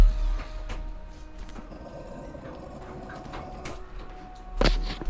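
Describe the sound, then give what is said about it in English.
A cat cries faintly amid shuffling and handling noises as it is let out a door, ending with a loud thump as the door moves; no one speaks. “Give me one second as I let my cat out the door. Yeah, I can hear it crying.”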